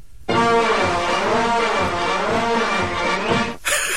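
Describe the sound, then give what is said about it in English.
A loud, buzzy trombone plays for about three seconds, its pitch sliding up and down in smooth swoops before cutting off abruptly, followed by a brief burst of noise. “Can we hear this trombone? Can I hear your trombone?”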